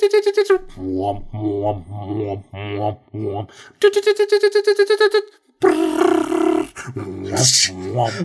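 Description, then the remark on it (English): A voice imitates the beeping noise of a screensaver showing a rover on an alien planet: first a few short repeated tonal bursts, then a rapid stuttering run of beeps, ending in a harsher, buzzy vocal sound. “But it would make this beeping noise. It would be like...”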